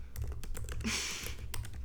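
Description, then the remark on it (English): Rapid, irregular clacking of keys on a computer keyboard, fairly quiet, with a brief heavier rustle partway through over a low steady hum. No one speaks. “Sorry about this typing noise, everyone.”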